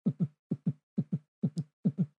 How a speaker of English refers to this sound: I mean, heartbeat was that? I mean, that makes me feel like I'm going to have a panic attack. Like, you know when in, like, movie trailers, they, like, play the heartbeat or breathing? And it goes fast.